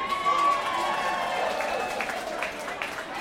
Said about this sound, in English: and the crowd just started to cheer.